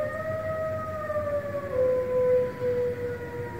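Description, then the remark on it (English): A fire truck siren wails in one long, sustained tone that slowly drifts lower in pitch over a low rumbling background, with no one talking. “So one YouTube user, Dustin Olson, posted a video in 2016 titled, Wolf Howls at a Fire Truck Siren!”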